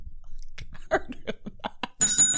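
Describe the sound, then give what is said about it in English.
A single bright bell ding rings out near the end and sustains with a shimmering tone, fairly loud, after a stretch of muffled, talk-like sounds. “I can't ding this harder. See how that feels. Just based on the week I've had and the things I've dealt with, I can't ding the bell.”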